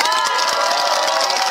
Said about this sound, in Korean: 그래서 제가 박수 한번 주세요.